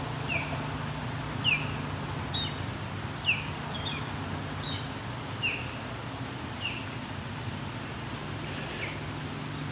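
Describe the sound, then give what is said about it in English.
An osprey about half a kilometer away gives a steady series of short, high whistled chirps, about one every second, over a constant low background rumble. “Of course, just as I go to leave, Osprey starts vocalizing proper Osprey calls.”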